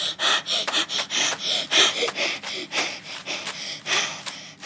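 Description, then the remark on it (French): Rapid, heavy panting, with quick breathy inhales and exhales repeating in a steady rhythm, like someone badly out of breath. No talking. “D'essoufflement.”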